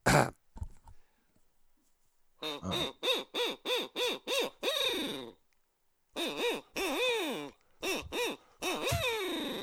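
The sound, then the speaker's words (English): Loud owl hoots blown on an owl call, used to make turkey gobblers gobble so they can be located, come in a quick rhythmic run of about seven calls. After a short pause, a second series follows, ending in longer, drawn-out hoots. “That's an owl. It's an owl call.”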